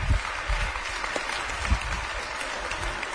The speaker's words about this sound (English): Now, I have a lovely assistant lined up this morning to help me. So I'd like a big round of applause, please,